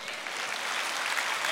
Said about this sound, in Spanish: Aplausos a Cristo.